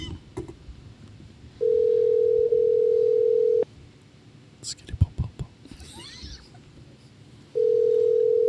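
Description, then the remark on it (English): A phone call to Noda Brewing Company rings out with a steady electronic tone, about two seconds long, then pauses for several seconds before the next ring starts. Faint murmuring and small clicks sit underneath. “We're calling Noda.”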